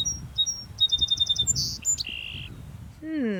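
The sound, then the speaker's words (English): A bird sings clear, high notes, its song resembling a famous four-note classical music motif: a few short chirps, then a quick run of repeated notes and longer sustained whistles, distinct over a low background rumble. “Those famous first four notes may not have been inspired by this bird, but it seems like this bird was inspired by the music.”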